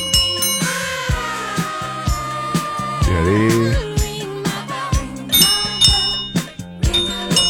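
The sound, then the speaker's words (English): Several handheld bells ring together in a bright, busy clatter of overlapping dings and sustained metallic tones, fairly loud, with a brief spoken word near the start. “Okay, everybody, do your ringy bell.”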